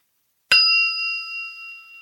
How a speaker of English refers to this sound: All right, I'm gonna ring the bell here. Here we go.